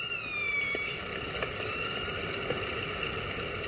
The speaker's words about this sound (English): Now, bear in mind, what you're about to hear was recorded underwater using a hydrophone. Here we are. Have a listen to this. Great, isn't it? No presenters, no music, just the sound of killer whales calling to each other.